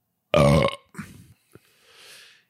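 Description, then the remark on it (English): A man lets out a loud, deep burp lasting about half a second, followed by a softer gurgling tail, a brief click, and a faint breathy exhale. “If your podcast host burps and you hear that burp in your headphones, you may think he is a rude person instead of a polite person, but maybe he's actually a polite person.”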